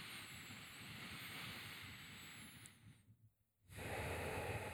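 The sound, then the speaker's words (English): Slow, airy breathing through the nose during a breathing exercise, steady: a long drawn-out breath, a brief silent pause, then another breath begins. No one speaks. “And just take a few breaths and through the nose.”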